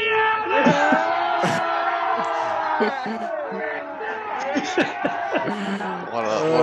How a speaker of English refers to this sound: You can obviously tell that was filmed in Geelong because the crowd's going nuts. Where else would that happen?